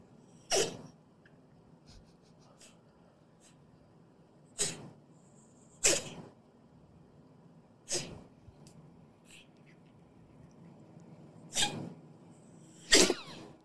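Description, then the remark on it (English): A small dog's reverse sneezing played from a video: six sharp, snorting bursts at irregular intervals over a faint low background hum, with no talking. “Well, it sounds like what my Shih Tzus growing up always had, reverse sneezing.”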